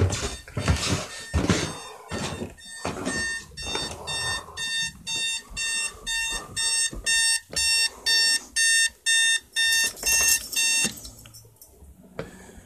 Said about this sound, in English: The alarm's going off. It was time for me to get up. Turn it off.